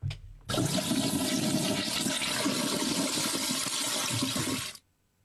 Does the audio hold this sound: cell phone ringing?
no